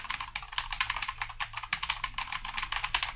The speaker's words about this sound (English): All right, I got to put in the password. A lot of typing to get to the email.